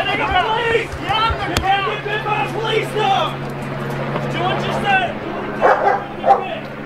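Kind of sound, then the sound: animal, police dog barking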